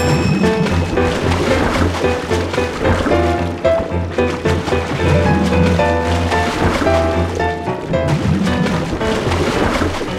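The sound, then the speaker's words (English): Loud, steady churning splashes of water from fast pedalling, a continuous rushing wash with no breaks, layered under sustained musical tones. “Pedal! We're making quite a splash.”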